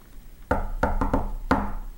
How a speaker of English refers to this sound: I calmly knocked the secret knock on a piece of cardboard. What's the secret knock?